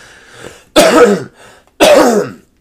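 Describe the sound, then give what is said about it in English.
Two loud, harsh coughs a second apart, each a rough raspy burst, with quieter breathy sounds before and between them and no talking. “Cough included, very much so.”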